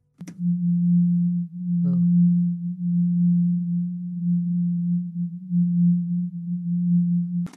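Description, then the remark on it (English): A low, steady hum tone drones for the whole stretch, its loudness swelling and dipping in a slow, uneven pulse, with a faint click at the start and end. “Remember, Yvonne does say that the hum feels like a pulse.”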